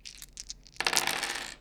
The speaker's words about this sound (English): There I am with my friends in Miss Belcher's math classroom rolling 20-sided dice.